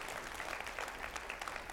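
A church audience gives a round of applause to the staff for what they shared on December Sundays, in a steady, dense patter of many hands clapping, fairly quiet and even throughout, with no voices standing out.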